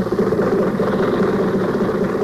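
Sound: old car engine running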